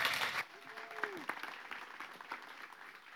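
An audience applauds as a speaker comes up to share, with a dense wash of clapping that swells loudly at first, then settles into a steady, softer patter, while a brief gliding tone sounds faintly through it.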